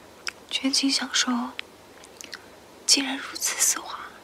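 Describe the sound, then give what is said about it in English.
Intimate biting and chewing of a Dove chocolate bar in a 2015 ASMR commercial made in China: moist, crackly mouth sounds in two bursts separated by a short lull, with soft breathy whisper-like noises mixed in. “It was for Dove chocolate, and it began with someone opening the Dove bar wrapping. Then they took a bite and chewed.”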